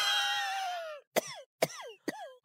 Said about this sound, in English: Oh, that sounds like a dry cough.